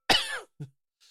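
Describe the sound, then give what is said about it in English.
A loud, harsh cough bursts out, followed by a shorter, lower hack and a faint breathy rasp, then quiet. No talking. “it's called I Cough a Lot. I felt that coming, too.”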